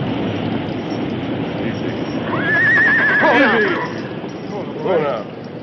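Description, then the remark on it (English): A horse named Silver lets out a long, wavering whinny that trails downward, followed by a shorter neigh, over a constant rushing, hissing background noise as a wall of water comes in. “Our horses are standing in water about a foot deep.”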